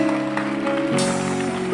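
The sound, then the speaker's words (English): An audience at a Palm Sunday church service claps together in a dense, steady patter of many hands, with sustained musical tones holding underneath and shifting partway through. “Put your hands together. Your clapping is not”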